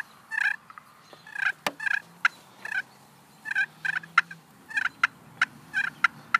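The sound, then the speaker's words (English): A turkey call gives short, sharp clucks mixed with rolling purrs, a steady string of quick notes with brief pauses between bursts and no talking. “A little cluck and purr.”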